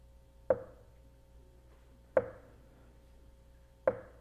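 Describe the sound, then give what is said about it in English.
A dripping faucet just off a bedroom: three sharp, evenly spaced drips about a second and a half apart, each a crisp plink with a brief ringing tone that fades quickly, over a quiet background. “Instead, it was a drippy faucet.”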